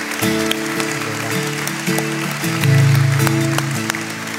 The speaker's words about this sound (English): All we simply do, could we applaud that person this morning and said, I want to follow Jesus. I want my identity in him.